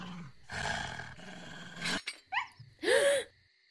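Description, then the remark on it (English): A hellhound caught in a hunting trap growls and roars in several loud, rasping bursts, ending with a rising snarl, with no one speaking. “I've seen this before in one of my old books. It's a hellhound.”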